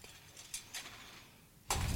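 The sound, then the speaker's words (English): Shower curtain rings clinking: a few light, bright metallic clicks spaced apart, then a louder jangling rattle as the rings knock together at the end. No voices. “And unfortunately, the metal juice rings are not as readily available as they have been in the past. So shower curtain rings.”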